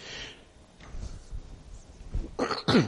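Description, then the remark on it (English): A few muffled coughs and throat-clearing sounds from one person speaking into a microphone, with quiet breathy pauses between them, ending in two sharper, louder bursts. “Coughing is going to be a bit difficult with a mic.”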